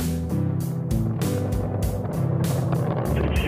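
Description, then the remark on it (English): A loud, continuous roar of a rocket's four first-stage boosters and single core engine at liftoff, with a deep rumbling low end and rhythmic bursts of crackling, buffeting noise surging every fraction of a second. “Those four first stage boosters and the single core engine.”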